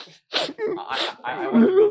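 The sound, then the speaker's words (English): A voice imitates crying: a few short, breathy sniffles give way to shaky, wavering whimpers that rise into a higher-pitched weeping wail at the end. “And you start to hear him sniffling and weeping.”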